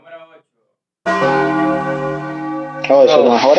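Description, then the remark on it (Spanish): A single deep video game bell tolls once, signaling that the in-game day is about to change, its rich ringing tone sustaining loudly for a couple of seconds. Someone speaks briefly just before it, and voices talk over its fading tail. “Oh, eso no, papá, eso son la campana cuando sí, va a cambiar el día.”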